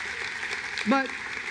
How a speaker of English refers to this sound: But hear me, though. Hear me, because I know you're clapping enthusiastically, but hear me.